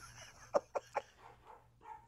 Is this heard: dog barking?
yes